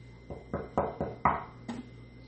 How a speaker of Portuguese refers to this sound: Mal ela saiu, o lobo bateu na porta.